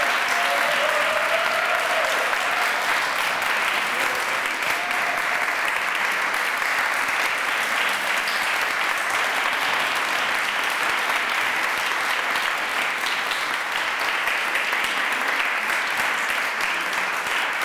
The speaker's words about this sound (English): Please give it another rising applause for these, our finalists.